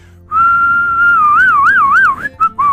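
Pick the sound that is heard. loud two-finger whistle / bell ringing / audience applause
loud two-finger whistle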